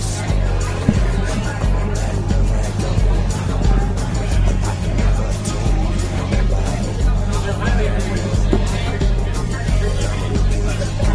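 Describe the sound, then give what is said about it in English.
Continuous crowd hubbub fills the whole stretch, a dense babble of many overlapping voices with no single speaker standing out, holding a steady, fairly loud level over a low rumbling hum. “I don't hear nothing but the crowd.”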